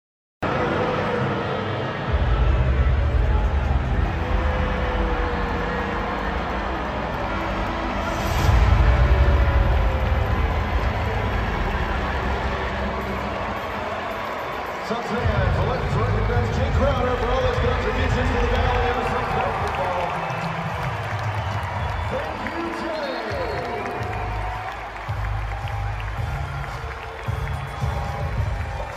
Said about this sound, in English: Okay, so the booing during the tribute, but the minute they put the camera on Jay Crowder, it seemed like it was more cheers.